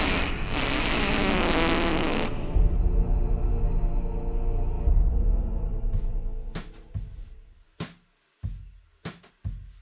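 A loud, drawn-out fart sound effect for the character Flatulous, the Fart Demon of Hell, on the Late Night Fright, opens with a harsh blast, rumbles on as a long low sputter, then trails off into a few short, choppy bursts.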